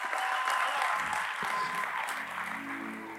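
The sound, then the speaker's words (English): Steady audience applause for a pastor, a dense, even clatter of many clapping hands that holds for the whole stretch, while soft sustained keyboard chords start underneath toward the end. “Come on, let's give it up”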